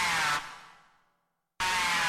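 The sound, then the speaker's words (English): Aggressive snarl of the Eastern Fighting Turtle, a North American turtle: a loud, harsh, buzzing roar that drops off and fades into a second of silence, then bursts back abruptly at full strength. “The aggressive snarl of the Eastern Fighting Turtle can carry for up to 5 miles across still water.”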